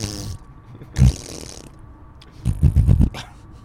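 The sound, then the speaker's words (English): Mouth-made fart noises while on the road: a brief sputter, a sharp puff, then a longer wet, buzzing raspberry that flutters for about half a second. No speech. “We make fart noises on fart the road.”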